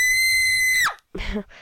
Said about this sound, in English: But there's, I'd say, like, 15 sounds on here that you can choose. I can play some. There's, like, a scream.